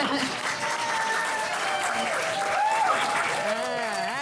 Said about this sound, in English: I think I deserve more of a clap than that because.